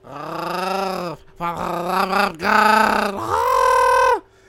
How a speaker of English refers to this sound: I can like roll my throat. I'm the throat goat.